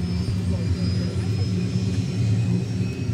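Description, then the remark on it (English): A deep, steady growl of helicopter power turbines kicking in rumbles continuously, heavy low-end drone with a faint high whine riding above it, loud and unbroken for the whole stretch. “You hear a deep growl as the power turbines kick in.”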